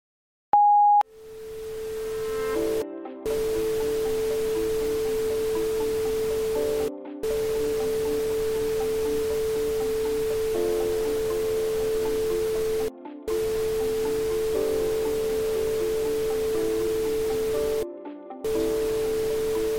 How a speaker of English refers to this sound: regardless of the number you input, it plays the same sound. Although, it's really an odd series of sounds, tones, and static, and I will send that to you.